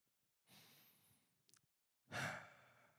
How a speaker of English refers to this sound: Heavy breathing. Don't that relax you?